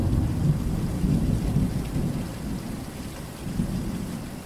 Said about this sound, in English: One of my favorite memories from last summer was actually having friends over for the first time since COVID, and all of us sitting on my patio watching a monsoon roll by. We feasted our eyes on the lightning show and soaked in the wet-smelling air.